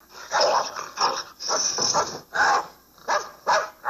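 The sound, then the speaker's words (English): A dog barks repeatedly, about half a dozen sharp, fairly loud barks in an uneven rhythm, with growly edges and brief gaps between them and no one talking. “Yeah, but you had you barking in the background, though. I was trying to talk over your barking.”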